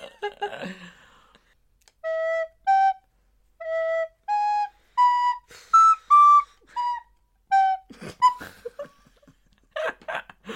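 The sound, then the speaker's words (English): A recorder is played badly: a slow, halting tune of about eight breathy, uneven notes that wobble in pitch, followed by rustling and some brief talking. “Because I don't want people sitting there for like 35 seconds listening to you fuck up the recorder.”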